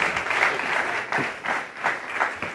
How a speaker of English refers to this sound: Thank you, guys. Round of applause.